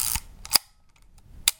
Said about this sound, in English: But it's a lovely little camera. Have a little listen to it. That's the wind on, sounds great. And the shutter.